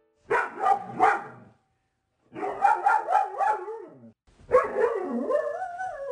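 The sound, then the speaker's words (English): A dog, Susie, a nearly two-year-old rescue from the Lawrence Animal Shelter in Kansas, barks in three loud bursts, the later ones stretching into yowling, howl-like cries with wavering pitch. Short pauses separate each outburst. “And the best way I know how to start a discussion about responding is by introducing listeners again to my dog, Susie.”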